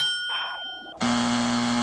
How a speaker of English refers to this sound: And you know who got the ding, and you know who got the buzz.